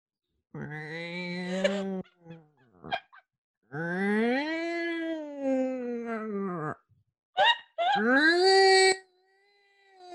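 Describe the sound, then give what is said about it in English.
A person imitates a cat in heat, producing several loud, drawn-out yowls that rise and fall in pitch, with brief pauses between the wavering cries. “Make the noise of a cat in heat.”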